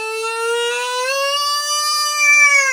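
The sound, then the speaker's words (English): A loud, steady electronic alarm blares continuously, a buzzy, harmonic-rich tone that slowly rises in pitch over a few seconds, with no voices over it. “That's what the alarm sounds like.”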